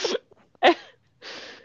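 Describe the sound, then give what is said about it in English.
Breathy puffs of air blown into someone's ear: a short gust, then a sharper voiced burst, then a longer steady exhale of airy hiss. There is no speech, just the soft rushing breath. “Or she says, like, if you feel a draft or something, he's like, no, it's blowing in your ear.”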